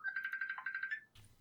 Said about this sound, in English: And that is actually a phone call from someone, a seller right now.